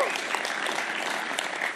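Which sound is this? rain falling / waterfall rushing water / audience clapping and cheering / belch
audience clapping and cheering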